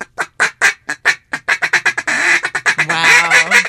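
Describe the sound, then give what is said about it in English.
A duck call blown in a rapid series of sharp, nasal quacks, speeding into a rolling, chattering run, loud with no voices. “Let's hear an actual duck call.”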